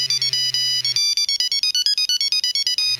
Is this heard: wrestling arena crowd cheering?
no